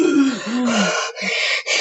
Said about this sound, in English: I may be too close breathing on this.